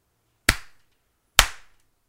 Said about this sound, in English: Before you do, though, are you going to snap and slap it out, sir? Slap this out. Okay. Hit it.